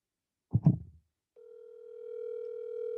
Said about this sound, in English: So I'm going to call him right now.